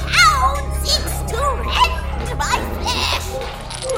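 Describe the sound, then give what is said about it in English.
Several puppies yip and bark in quick, overlapping high-pitched bursts, fairly loud, over a low steady hum in the background. “They're just puppies.”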